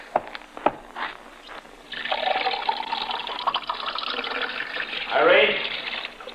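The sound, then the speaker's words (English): A few light clinks, then water pours steadily into a glass for several seconds, its pitch rising near the end as the glass fills up. “I'll get him a glass of water.”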